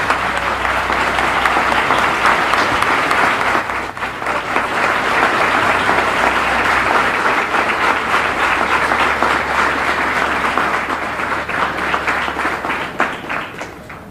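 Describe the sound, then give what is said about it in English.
A large audience at the Final Call Administration building applauds in a dense, steady wash of clapping to welcome Minister Louis Farrakhan, holding strong for about fourteen seconds with only a slight easing near the end and no voices. “Let us welcome our brother with a warm round of applause and listen to him carefully, our brother, Minister Louis Farrakhan.”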